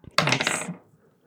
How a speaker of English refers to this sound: I'll use my new evil dice. Let's see what that does.